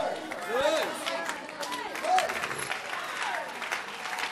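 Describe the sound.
During preaching, an audience claps in a steady, dense wash of overlapping hand claps, moderately loud and sustained, with faint voices and a few rising shouts mixed in.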